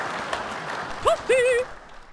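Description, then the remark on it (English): A steady wash of applause fills the short stretch, with a brief swooping whoop or cheer rising over it partway through before the clapping fades. “Clap for me, bitch!”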